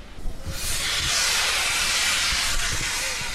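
A steam locomotive lets out a loud, continuous hiss that swells in within the first second and holds steady, with faint low rumbles and clunks underneath, as two steam locomotives couple together, joining the two parts of a train. No one speaks.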